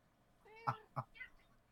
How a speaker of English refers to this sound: What are you meowing at me for? Don't meow at me like I said something wrong.